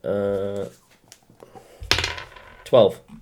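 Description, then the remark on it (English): A twelve-sided die clatters onto a hard tabletop in two quick, sharp bursts of rattling clicks, fairly loud, after a brief voiced sound at the start. It is rolled while filling out a role-playing game character sheet. “I rolled a D12.”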